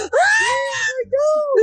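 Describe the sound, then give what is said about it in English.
A voice imitates a woman screaming: two loud, drawn-out, high-pitched wailing shrieks, the second briefly rising before trailing off. “But inside, when he put his arm around me, she's screaming.”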